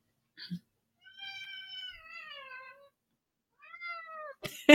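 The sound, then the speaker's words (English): A cat named Phoebe, trying to jump up on top of a bookshelf, lets out a long, drawn-out meow with a wavering pitch, then a second shorter meow after a pause, clear, followed by a brief sharp noise at the end. “They close every episode with the cat meowing.”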